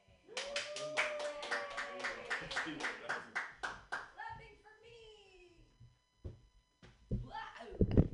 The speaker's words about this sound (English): Okay, clap for me. Yay, clapping for me.